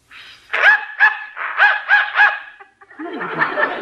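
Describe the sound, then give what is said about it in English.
A dog barks five times in quick, evenly spaced bursts, fairly loud, in response to a dog whistle, then a softer scuffling noise follows as the barking stops. “Dog heard it, but I didn't.”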